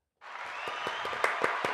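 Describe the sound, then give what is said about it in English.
A burst of applause given to thank viewers for tuning in starts abruptly and holds steady, a dense wash of clapping with a few sharper, louder claps popping through, moderately loud, with no talking. “We're going to give y'all a round of applause for that.”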